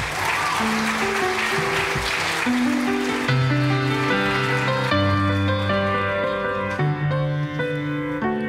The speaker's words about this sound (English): You can clap for her.